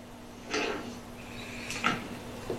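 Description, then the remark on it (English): A few short scraping, clattering bursts as doors are pushed open by a man leaving, spaced apart over a steady low hum, not very loud. “As you can hear the doors opening as he leaves,”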